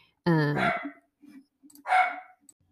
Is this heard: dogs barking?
yes